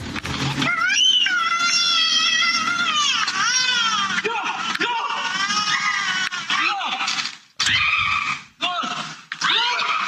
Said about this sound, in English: What is that screaming in the back? Probably the mom.